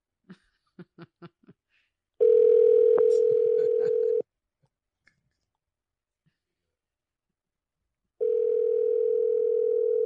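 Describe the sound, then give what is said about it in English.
A phone call to a man rings out while waiting for an answer: a few quick taps, then a loud, steady two-second ringback tone, a long silent gap, and the tone starting again. “He better pick up.”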